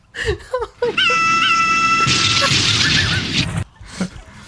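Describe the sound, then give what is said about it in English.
A man imitates a plane crash as he crashes the plane: a few falling vocal whoops, then a sustained high whine like a diving engine that breaks into a loud, rough crashing roar before cutting off abruptly. “Is that him making the noise as he crashes the plane?”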